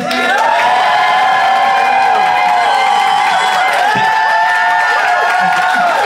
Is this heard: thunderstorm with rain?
no